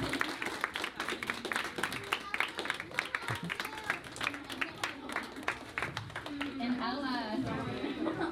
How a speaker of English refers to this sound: All right, come on, keep the applause going for our OBC kids who are graduating out of OBC Kids and into our Alive student ministries, our middle and high school ministries.